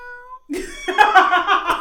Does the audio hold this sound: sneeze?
no